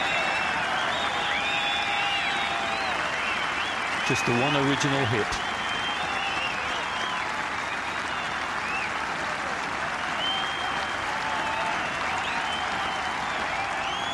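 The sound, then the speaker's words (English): Sustained applause from a large outdoor golf gallery for golfer Tom, a dense steady patter of clapping, with a man's voice briefly speaking over it. “Same applause from the galleries.”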